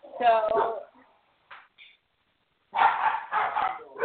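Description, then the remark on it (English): Several dogs bark loudly at night in short bursts, with a brief whimper-like yelp in a pause before a final flurry of overlapping barks. “My road dogs are having a lot to say tonight. Will you please try to put them in the yard?”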